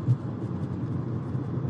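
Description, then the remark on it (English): A steady, low engine drone heard behind a phone call rumbles continuously, dense and unbroken in the bass with a faint airy hiss above, and no voices come through. “I want to hear what you have to say, but the fact that you sound like you're on an airplane is really annoying me.”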